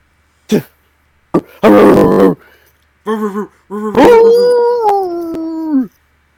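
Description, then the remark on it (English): People imitate a dog with their voices, barking for the Bulldogs, letting out a few short, loud bark-like yelps followed by a drawn-out howling cry, with no other talking. “Randomly start barking.”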